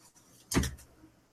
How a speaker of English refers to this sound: The door opens just a crack.